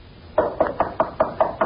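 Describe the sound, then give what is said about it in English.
Six firm knocks on the wooden door of Captain Friday's cottage in the village of Holman, evenly spaced in a quick steady rhythm, fairly loud with a hollow thud to each. “Open the door and let the corpse walk in.”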